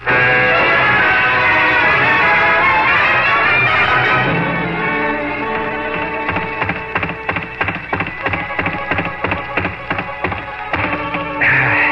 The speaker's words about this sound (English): It's too blamed good, boy. You wore out another punching bag.